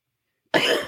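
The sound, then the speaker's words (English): A man's single harsh cough bursts out abruptly after silence, loud, with a raspy throat-clearing quality trailing off briefly, in an ad urging annual COVID vaccine shots. “It's a guy coughing over a you can't see it sign.”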